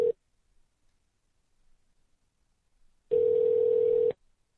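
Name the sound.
phone ringing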